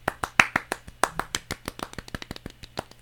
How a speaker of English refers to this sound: Round of applause.